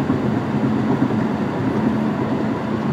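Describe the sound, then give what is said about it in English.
A heavy truck passes right next to the speaker, rumbling loudly, its deep engine drone and road noise holding steady and unbroken throughout, with no voices. “Yeah, you can hear this truck right next to me probably.”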